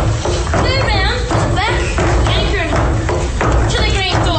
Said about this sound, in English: But once again, due to the over-enthusiastic cobbling in the background, you can't hear the dialogue.